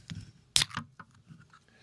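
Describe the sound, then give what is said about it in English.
A can of Busch Light Apple beer is cracked open with one sharp metallic snap, followed by a brief fizzing hiss as the carbonation escapes, then faint rustling. No one speaks. “I found some Busch Light Apple. Let's go for a crack.”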